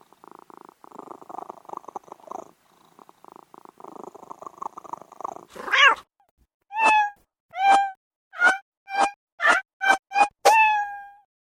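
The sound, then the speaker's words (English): A low, steady rumbling purr gives way to a loud, rhythmic string of about eight sharp cat meows, quickening toward a final drawn-out yowl. “dig those swinging cats.”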